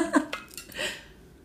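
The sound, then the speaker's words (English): Someone takes a quick drink of water: a few soft gulps and swallowing sounds with breathy pauses between them, ending in a faint exhale. “Sorry, water break.”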